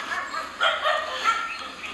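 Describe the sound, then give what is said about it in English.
Dogs bark near a temple in a loose series of sharp, yappy outbursts, the barks overlapping a steady background hum and low murmur. “unlike these fellows over here, so dramatic. This shall not pass. Rascals. And they hang out at the temple.”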